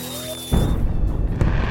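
A thin whistling tone gives way to a loud, deep firework boom that rolls into a rumbling, crackling tail, with a second smaller burst near the end. No voices.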